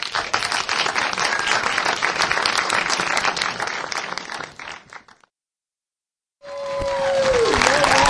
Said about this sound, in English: as you hear the applause from the people in attendance, and we're about to have a Q&A.